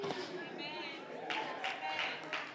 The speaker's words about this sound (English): See that? One, two. See them golf claps? Y'all see that?